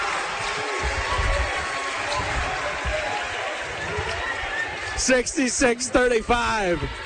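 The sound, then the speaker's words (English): A basketball crowd cheers after a straight-on three-pointer by an Ogemaw Heights Falcons player, a loud, steady roar of many voices that carries on as a man starts talking over it near the end. “And the crowd goes wild.”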